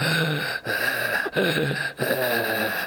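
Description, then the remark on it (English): A voice imitates the heavy, labored panting of an old woman without a mask standing behind someone waiting at a CVS pharmacy: about four loud breaths separated by short pauses, with no talking. “and then immediately upon like walking up to wait for someone to help me, I hear this heavy breathing behind me, and this old woman not wearing a mask.”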